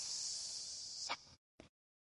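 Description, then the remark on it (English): A drawn-out hiss made by a voice, imitating a snake, with a bright, airy sustained tone followed by a short breathy burst, fairly loud, no talking. “I'll give you another onomatopoeia. Hissing. Hiss.”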